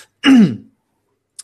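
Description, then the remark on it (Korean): A single loud cough with a harsh throaty rasp, lasting about half a second, followed by silence and a faint short click near the end. “아 제가 기침을 하면 이런 느낌이군요 대충.”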